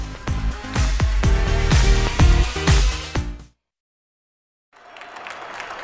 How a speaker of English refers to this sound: Welcome back to First Move, and cheering, smiling faces there over at the New York Stock Exchange, and U.S. stocks are up and running, and it's a cautious open after the Dow's first ever close above 36,000 in Tuesday's session.